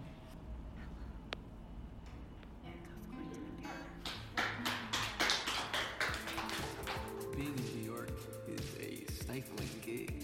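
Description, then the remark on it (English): Dishes being washed, with irregular clinks and clatters of plates and cutlery that grow busier and louder after the first few seconds, over a low rumbling background and faint murmuring. “And then there's the soundtrack of the dishes being washed in the background with the interval of harsh noise dishwashing.”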